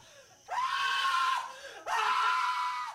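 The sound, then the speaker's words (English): A man screams twice in loud, drawn-out bursts, each lasting about a second, separated by a brief pause, with no talking around them. “He sure would scream out when his mama told him it was summertime and Christmas was 6 months off.”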